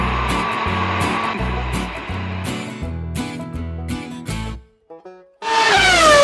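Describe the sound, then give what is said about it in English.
Rhythmic music with a steady bass pattern plays, cuts out briefly, then the loud engine of the Empire Home Loans Fast Close race car roars by, its whine dropping in pitch as it speeds past. “That was the Empire Home Loans Fast Close race car.”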